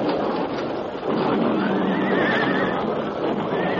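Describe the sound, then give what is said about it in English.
Horses pulling a stagecoach on a narrow trail along a cliff edge whinny shrilly in panic, loud, their high wavering cries rising over a dense, noisy commotion that fills the whole few seconds without a pause. “A sudden flash of fire and an ear-splitting explosion came without warning just ahead of the horses.”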